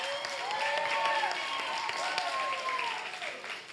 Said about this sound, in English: That applause should be for me that she even accepted me, the amazing woman.